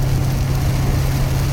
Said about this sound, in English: Oh boy, it's really raining now.